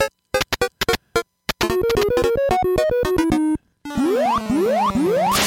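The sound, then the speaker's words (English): Donkey Kong 3 (DK3) retro video game spraying sound effects: quick staccato electronic bursts, a run of stepped buzzy tones, then three rising, zipping sweeps repeated in a steady rhythm, fairly loud with no talking. “See, that's you spraying.”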